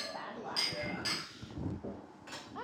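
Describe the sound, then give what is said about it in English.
Glasses clink together in a toast, three bright, ringing taps spaced unevenly, over a low murmur of background voices. “Well, cheers to Rhymo. Yes. I'm cheersing it.”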